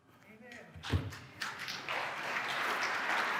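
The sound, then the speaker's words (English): An audience at a Catholic sermon breaks into applause. A few scattered claps and a thump come first, then the clapping swells into a steady, dense wash of sound that keeps building and stays loud to the end. “Don't applaud.”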